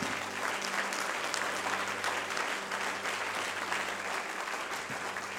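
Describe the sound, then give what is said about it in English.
An audience claps their hands together for receiving, in steady, dense applause that fills the whole clip at an even loudness, with a low hum running underneath and no talking. “I wonder if we can clap our hands for receiving.”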